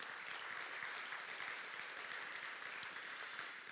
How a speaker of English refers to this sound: So give them a round of applause and thank them for that this morning.